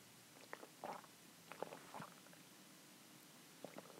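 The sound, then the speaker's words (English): Gulping as someone takes a sip of water from a 64-fluid-ounce Oberweis container, a few wet throat sounds spaced across a few seconds, with no talking. “My throat just sounded like a freaking monster.”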